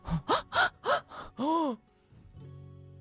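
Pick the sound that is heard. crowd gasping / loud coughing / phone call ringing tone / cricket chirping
crowd gasping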